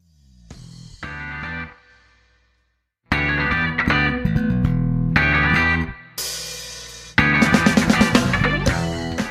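A loud, distorted rock music track with driving rhythm and dense harmonic layers, starting softer, pausing briefly into silence, then crashing back in with full band energy and sharp accents.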